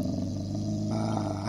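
A dog growls low and steadily for a moment, a continuous rumble with no talking, ending in a sharp burst at the very end.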